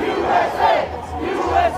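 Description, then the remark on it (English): A medium-sized crowd of protesters on the east side of the U.S. Capitol, facing the Library of Congress, at about 10 a.m., chants chants such as "Stop the Steal" and "USA" together in loud, rhythmic bursts, many voices rising and falling in a repeated cadence with a steady low rumble beneath. “So we got to the east side of the Capitol, the side facing the Library of Congress, at about 10 a.m., and there was kind of a medium crowd there, and they were doing their usual chants, like Stop the Steal and USA.”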